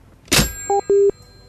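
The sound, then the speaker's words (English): A loud clunk of a phone being hung up, followed by two electronic beeps: a short two-tone blip, then a longer, steady mid-pitched tone. No voices. “I'll just hang up on him.”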